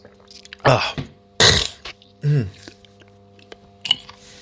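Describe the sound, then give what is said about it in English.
Three harsh coughs in quick succession, each a short rough burst, followed by a smaller throat-clearing sound near the end, with quiet pauses between them. “Trying not to cough up my lung, actually, come to think of it there.”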